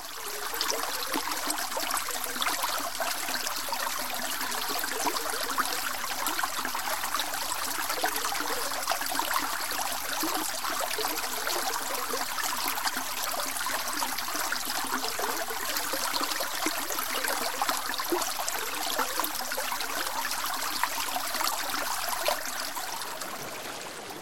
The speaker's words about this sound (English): Droplets gather, forming a stream. A hypnotic swirl, gentle at first, but gaining strength as gravity draws more tributaries together.